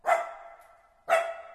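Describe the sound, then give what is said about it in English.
A small dog barks twice by the edge of a loch, sharp high-pitched yaps about a second apart, each ringing briefly before fading, fairly loud with no voices around. “He was barking his head off to remind them not to forget him.”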